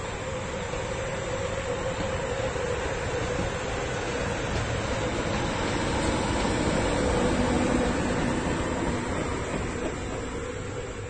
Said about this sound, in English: A train every minute or two, such is the density of traffic on European rail routes.